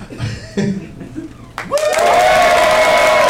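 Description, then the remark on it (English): Quiet murmuring gives way to a sudden burst of loud, dense applause with cheering from a live show audience in Sacramento as the show comes back from a break, continuing steadily to the end. “It should be applause first and then me saying we are back.”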